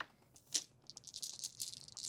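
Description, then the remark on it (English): Six dice rattle and clatter across a hard surface in a quick burst of clicks, rolled for a wits and insight roll, starting with a sharp knock and tumbling on for a couple of seconds, fairly quiet. “I'd like a wits and insight roll from you.”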